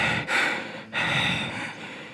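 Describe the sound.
Someone imitates heavy breathing, with three or four loud, airy breaths pushed out in quick succession and no talking, voicing two brothers standing still and breathing heavily.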